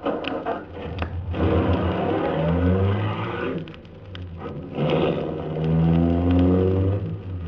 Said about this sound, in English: I looked again at the limousine. An official car of the MVD. Trying to be as casual as possible, I went over and looked in. The ignition keys were there. I got in quickly, stepped on the starter.